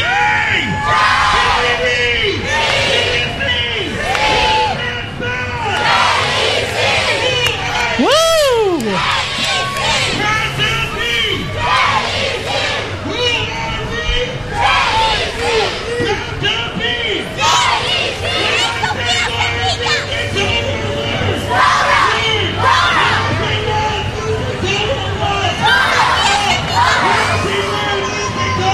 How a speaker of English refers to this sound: Screaming, go blue team. Go blue.